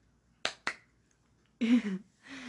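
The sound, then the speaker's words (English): Two quick, sharp hand claps in rapid succession, then a short burst of voiced sound, like someone briefly vocalizing. “I'm happy with myself, you know. Clap, clap.”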